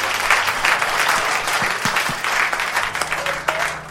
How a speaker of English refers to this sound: I can give the Lord a round of applause.